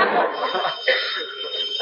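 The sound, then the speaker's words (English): A telephone bell rings steadily for the whole moment, a bright, high metallic trill held without a break, fairly loud over a muffled, rumbly background. “Oh, there's the phone, Aunt Aggie.”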